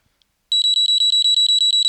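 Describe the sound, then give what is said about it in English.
A phone charger's built-in overheat alarm, triggered above 54 degrees Celsius, sounds: a loud, shrill electronic beeping in a fast, steady pulse, about a dozen rapid beeps after a brief silence, with no voices. “It's the alarm that's built into the device”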